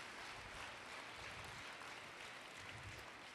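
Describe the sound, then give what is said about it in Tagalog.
An audience claps together for the Lord in a dense, sustained burst of applause, steady and loud throughout without any voices standing out. “Sa pangapong mas malakas na palakpak, ibigay natin sa Panginoon.”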